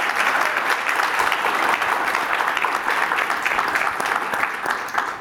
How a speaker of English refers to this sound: Round of applause